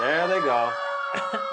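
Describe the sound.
A fire engine siren, heard from inside the firehouse as the engine leaves, holds a steady, piercing tone throughout, while a voice with rising and falling pitch briefly talks over it and a couple of short bursts of noise cut in near the end.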